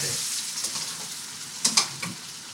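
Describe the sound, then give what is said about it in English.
Pasta, taken straight out of its cooking water, sizzles in a frying pan with a steady hiss, broken near the end by a few sharper crackles and pops. No one speaks. “So you're literally tonguing the pasta straight out of the water, chucking that in the pan. I don't know if you can hear the sizzle.”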